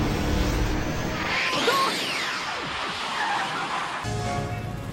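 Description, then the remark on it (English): A futuristic flying car lifts off with a loud engine roar and sweeping, whining tones that rise and fall before the sound abruptly shifts near the end. No one speaks. “We're going to go, we're going to travel in the future with our flying cars.”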